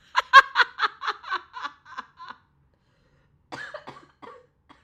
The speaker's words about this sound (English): Sorry for coughing in your ear.